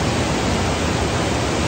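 flowing water

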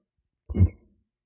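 burp

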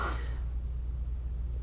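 yawn

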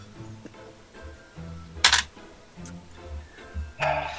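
dice rolling

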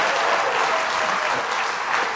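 audience applauding

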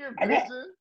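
sneeze

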